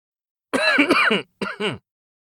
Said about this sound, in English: However, I caught a whiff of smoke from the cigarette and started to cough.